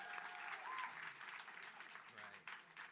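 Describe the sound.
An audience at a live storytelling event claps for a storyteller who has just finished, a dense crackling wash of many hands that stays loud throughout, with faint voices mixed underneath.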